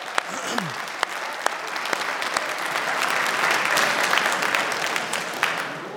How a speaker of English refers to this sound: I can't tell you how much that encouraged me to have you guys clap to that.